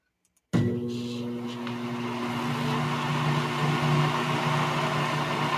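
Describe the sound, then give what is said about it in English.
After a brief silence, a steady electrical hum kicks in abruptly and holds, the drone of a microwave oven running with a constant mechanical whir and no voices. “Ah, there it is, a microwave.”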